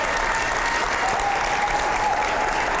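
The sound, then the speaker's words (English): A church audience claps steadily, a dense, even wash of many hands applauding at a constant loudness for about three seconds, with no voices standing out, thanking the Bar None Fire Department. “And so if you would, church, give them a round of applause and thank them.”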